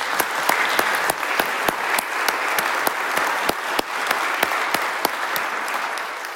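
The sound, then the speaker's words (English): An audience at a parish gathering applauds steadily for the church staff, a dense wash of clapping with sharper individual claps cracking through at irregular intervals, sustained at an even, moderately loud level throughout with no voices. “Ladies and gentlemen, let's give them a round of applause.”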